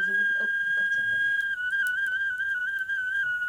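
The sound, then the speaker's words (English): A Bronze Age-style whistle made from a red deer leg bone, marrow removed and small holes cut, blown in one long, steady, fairly shrill note that wobbles slightly in pitch partway through, with faint low murmuring beneath it at the start. “There's another piece of red deer leg bone, and when you take out the bone marrow and put in little holes and openings, you have a whistle.”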